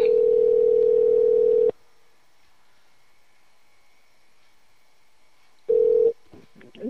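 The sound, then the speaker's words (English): A phone's ringback tone on an outgoing call, live on air, calling back a caller whose call had dropped: a steady buzzing ring, a long pause, then a second ring that cuts off abruptly, followed by faint clicks. “Ring, ring, ring. One more time.”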